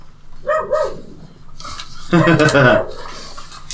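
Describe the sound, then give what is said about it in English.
A dog barks early in the morning as a sound effect, twice: a short bark followed by a longer, louder drawn-out one, against a faint clattering background. “Dog early in the morning barking.”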